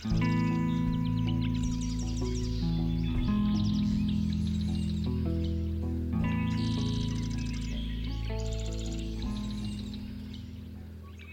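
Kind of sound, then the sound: bird, bird song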